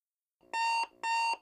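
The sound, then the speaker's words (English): An alarm clock goes off at 9 a.m., ringing in two loud, evenly spaced electronic bursts, each a steady bright tone lasting about a third of a second, with nothing else around it. “It's Friday at 9 o'clock a.m. Your alarm goes off.”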